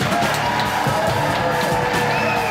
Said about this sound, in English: Give him a great round of applause